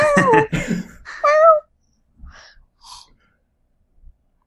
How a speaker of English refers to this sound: I think we should just edit this episode, and the reply to every question should just be that meow.